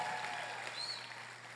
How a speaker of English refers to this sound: Aquel que se atreva a creerlo, de un gran aplauso. He who dares to believe, give a great round of applause. Y un grito de júbilo. And a cry out of jubilee.